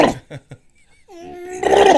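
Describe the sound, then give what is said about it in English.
A voice imitating a father's loud sneeze: a few short breathy catches, then a drawn-out, rising vocal wind-up that breaks into a loud, harsh, noisy burst at the end. “I get to the point where my dad sneezes.”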